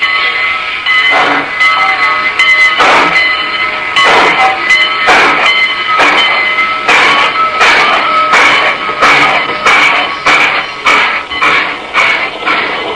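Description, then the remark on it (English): A Great Valley Railroad passenger train, heard from its observation car, rolls steadily along the rails from Northbridge, Minnesota, with a loud, continuous rumble and regular clacking beats from the wheels passing over track joints. There's no talking. “Wilbur Norris, first vice president of the Great Valley Railroad, and I were sitting in the observation car of a Great Valley train at Northbridge, Minnesota.”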